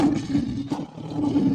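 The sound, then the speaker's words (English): A lion roars in one loud, continuous, deep rumbling growl lasting the whole moment, rough-textured with a brief swell partway through. “That was a lion.”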